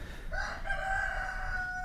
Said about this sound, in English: I enjoy the atmosphere that they create. It feels good to hear a rooster.